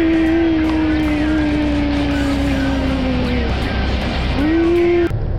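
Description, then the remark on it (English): A rental car's engine runs loudly and steadily on a frosty morning in the rain, its droning pitch sagging slowly before climbing back up near the end, with no voices. “This car really is a nightmare.”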